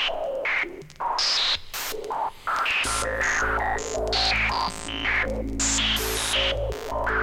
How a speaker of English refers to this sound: Got one of those white noise synthesizers.